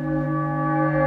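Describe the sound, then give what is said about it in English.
A church bell played in reverse: a sustained, rich metallic tone with layered overtones that holds steady and swells slightly toward the end instead of fading, with no voices. “And now, flip the church bell around, and the church bell will also be backwards.”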